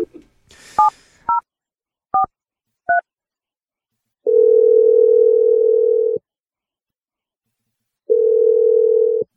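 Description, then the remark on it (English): A phone line clicks, a few quick keypad beeps are dialed, then two long, steady ringing tones sound with a pause between them, clear with no one speaking, as a call is placed to a man's girlfriend. “We're going to dial your girlfriend and let you make your awkward Tuesday phone call.”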